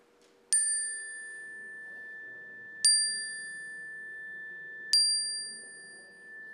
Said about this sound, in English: We turn our attention to those people and places, and when I sound the chimes, I invite you to speak them into our shared sanctuary.